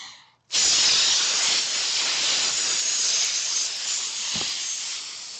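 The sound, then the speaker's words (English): A single long, steady hiss made by a voice pushing air out during a breathing exercise, like a balloon deflating, loud, sustained for about five seconds with no talking. “Kind of reminds me of like letting the air out of a balloon. Oh, I'm thinking of a snake.”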